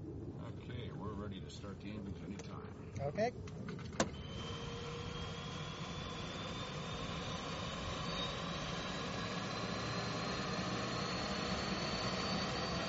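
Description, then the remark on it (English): Engine noise heard from inside the cabin of a specially designed aeromagnetic survey plane: after a few clicks and faint muffled voices, a loud steady roar builds with a whine that rises slowly in pitch as the engine spools up. “The instruments in this specially designed plane detect the magnetic fields in crustal rocks.”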